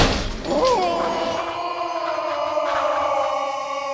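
A flimsy hut wall smashes apart in one loud crash as Moonface falls back against it and smashes through, followed by a few seconds of rattling, ringing debris that slowly fades.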